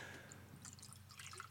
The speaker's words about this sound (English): Ooh, that's a heavy-handed pour there.